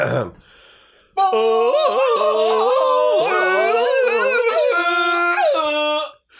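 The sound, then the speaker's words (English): Several voices imitate a Tarzan yell together, a loud, warbling, wavering cry held for about five seconds after a brief quieter moment, then cutting off abruptly. “Should we end the episode with our best Tarzan yell?”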